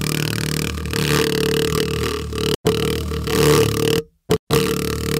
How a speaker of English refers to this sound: they put a paper on top of a woofer of a speaker, and then it started fluttering